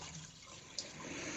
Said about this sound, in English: Got some noise there. Is somebody running water? Oh, that was me. Yeah, sorry about that.